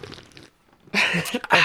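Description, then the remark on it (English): A Crispy Boy drink is opened and sipped: a soft rustling burst, a brief pause, then a loud, crackly fizzing and slurping stretch that fills the rest. No one talks. “Let me get that sip real fast.”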